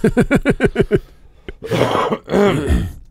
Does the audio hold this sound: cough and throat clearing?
yes